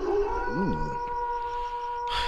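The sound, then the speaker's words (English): A person briefly imitates a wolf howl with a short, wavering rise-and-fall vocal tone, heard over a steady sustained hum of background tones. “I just love that wolf sound.”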